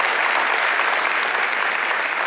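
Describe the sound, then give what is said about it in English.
A crowd at Black Hawk Church applauds the elementary kids on Labor Day Sunday, a dense, even wash of many hands clapping at once, loud and sustained throughout with no pause, a few cheers faintly mixed in. “Let's hear it for all the elementary kids that are with us.”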